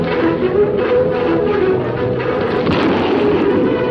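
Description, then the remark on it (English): Rapid gunfire and booming blasts from the opening of the TV show The Lone Ranger, which premiered on ABC in 1949, in a muffled, old-fashioned recording, loud and continuous for a few seconds, blending into a dense rumbling roar with no voices. “A lot of gun.”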